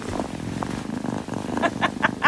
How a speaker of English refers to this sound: That is one purry kitty. How warm and wholesome.